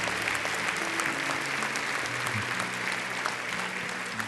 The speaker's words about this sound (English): Let's give the Lord one more clap offering. Here we go.